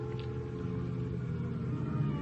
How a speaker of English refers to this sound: Then I hear a car outside. There's light enough through the window to tell me it's Lieutenant Hama.